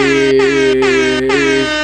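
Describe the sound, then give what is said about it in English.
A loud air horn sound effect, played from an air horn button, blares in rapid repeated blasts, three or four quick honks running almost together, with no one speaking over it. “And I'm the one that's gonna get on your nerves today because I got the motherfucking air horn button.”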